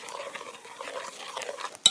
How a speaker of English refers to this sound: I'm pouring the milk into the syrup and sugar and butter.